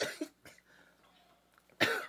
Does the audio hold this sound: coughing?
yes